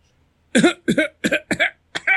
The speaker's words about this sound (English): Now, like, you have someone smart in the audience who coughs.